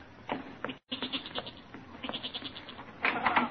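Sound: goat bleating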